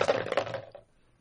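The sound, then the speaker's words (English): Dice clatter and tumble across a hard table in a quick burst of small clicking impacts, fairly loud, settling within about half a second into quiet. “Or what the fuck, dice?”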